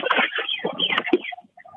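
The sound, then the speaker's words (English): Birds chatter outside on a porch in a dense, busy burst, then a few short separate chirps follow. The sound is muffled and narrow, as if heard over a phone, at moderate loudness. “So there's some birds out here.”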